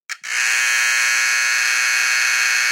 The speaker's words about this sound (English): And then battery-operated buzzers were soon to follow, which is kind of funny to think that you had to actively replace a battery to maintain something that might have sounded like this.